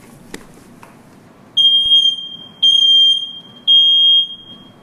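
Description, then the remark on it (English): A smoke detector beeping: three loud, high-pitched electronic tones, each lasting about half a second with a steady gap between them, over a faint low background rumble and no talking. “We got the fire detector. Yeah. It's beeping, right?”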